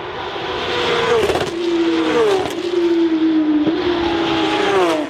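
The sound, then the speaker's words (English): A Porsche Carrera Cup race car engine, driven by Warren Luff, Stephen Richards or Nick Foster, roars loudly and continuously on track, its pitch rising and falling through gear changes with sharp revving, with no voices. “Warren Luff, Stephen Richards and Nick Foster, Porsche Carrera Cup.”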